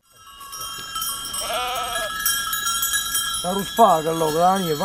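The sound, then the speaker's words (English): A migrating herd of sheep or goats bleats repeatedly over a dense jingle of many small bells, with the loud bleats building in the second half and no talking. “For millennia, animals around the world, sheep, goats, cows, buffalo, reindeer, have been setting out twice a year on a journey that can take days or months.”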